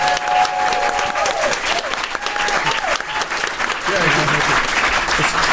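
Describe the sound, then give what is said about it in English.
An audience applauds steadily, a dense, sustained patter of clapping at fairly high volume, with a few voices and faint tonal cheers rising over it. “Let me hear a very warm round of applause”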